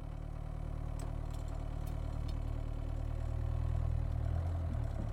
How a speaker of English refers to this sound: You guys distribute the keys, and then walking over to the shack, you can hear the putter of the engine echoing far out into the desert.